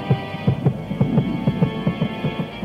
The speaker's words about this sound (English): Pounding heartbeats.